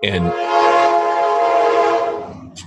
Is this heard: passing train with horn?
yes